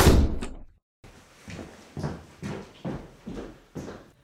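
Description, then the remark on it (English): A door slams shut with a loud, heavy bang. After a short silence, a steady run of heavy footsteps thuds away at an even pace. “A door slammed, and the sound of heavy footsteps marched away.”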